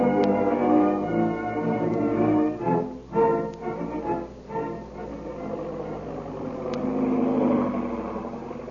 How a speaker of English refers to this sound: At that very moment, the big black seaplane is heard over the mysterious plantation house, circling for a landing. And gracefully skids to a stop on the beach.